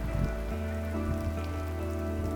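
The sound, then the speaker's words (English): Steady rain patters down on a hard surface in a continuous, even wash of drops, fairly loud, with a faint low hum running underneath and no voices. “Despite a lot of rain, the vibe of the place felt welcoming.”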